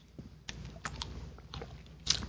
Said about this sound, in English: Let me just take a swig of this here.